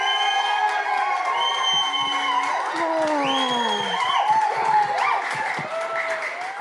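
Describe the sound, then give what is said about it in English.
A large debate audience cheers loudly to vote for a team, with shouts, whoops and high-pitched screams over a steady patter of clapping, sustained at full volume for several seconds. “Do you just like cheering and clapping?”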